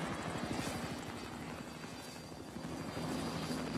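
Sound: helicopter flying overhead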